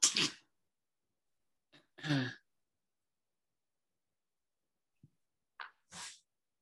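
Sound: dog sneezing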